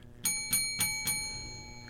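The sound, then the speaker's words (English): A small bell, rung to celebrate donations to the show, rings four times in quick, even succession, each bright metallic ding ringing on and fading as the next strikes, then a lingering shimmer trails off into quiet. “Andrew, you want to ring the bell for me?”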